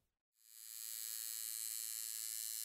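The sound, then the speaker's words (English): A tattoo machine switches on after a brief silence and settles into a steady, high-pitched electric buzz that holds constant without pause, with no voices, while tattooing black lines of a design onto a shoulder. “He started up the tattoo gun, buzzing like a big angry hornet, and in the black lines went, long like needle-thin stitches.”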